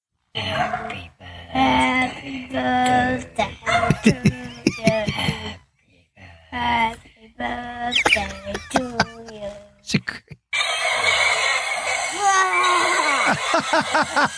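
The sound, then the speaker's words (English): Two boys' voices roar and growl like dinosaurs in loud, strained bursts, with breaks between, followed by a noisier stretch of continued vocal shouting over a background hiss. “Roaring dinosaurs, boys.”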